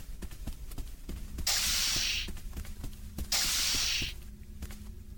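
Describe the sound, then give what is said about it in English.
Two sharp, airy pneumatic hisses, each lasting under a second and spaced about two seconds apart, like sci-fi turbolift doors sliding open, over a steady low mechanical hum. “Turbo lift doors, right?”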